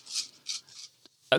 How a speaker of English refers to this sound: Like 16 dice? That's a lot of dice. Four each. Four each, yeah. So 16 dice. We just roll them all at once.